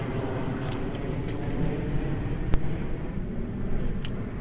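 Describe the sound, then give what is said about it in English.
A large airplane drones overhead above the River Thames at Richmond, London, a steady low rumble that fills the background without rising or fading much, with a faint click partway through and no voices. “I'm in Richmond, and I'm coming, there's Hammersmith behind me, and Sheen, and a big plane.”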